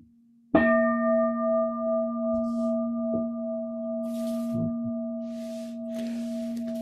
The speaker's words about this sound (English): And as the bell rings itself out, can you hear me when the bell is ringing? Is that okay?